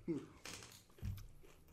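Close, crisp crunching from someone biting into a chicken wing, a few irregular bites and chews with a low thud near the mouth, quiet and intimate.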